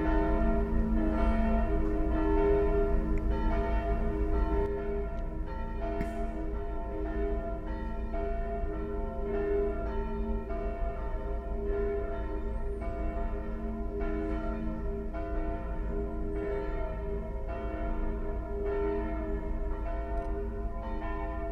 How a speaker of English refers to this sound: I don't know why it's 7:55 a.m. I'm not sure what that signifies. Like, the bells for it's almost 8 a.m.